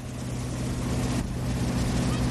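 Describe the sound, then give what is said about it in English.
A motorboat engine towing water skiers on a lake drones steadily with a low, harmonic rumble and a broad wash of spray and water noise, holding an even, fairly loud level throughout with no voices. “That's them water skiing.”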